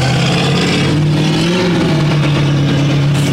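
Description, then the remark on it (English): A car engine revs loudly, a steady low rumble that swells and dips in pitch around the middle before settling back, with street ambience behind it and no talking. “I don't love that car.”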